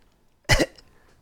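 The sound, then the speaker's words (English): A person makes a single short, small cough sound with their voice, one quick burst in otherwise quiet surroundings. “little tiny cough all night long.”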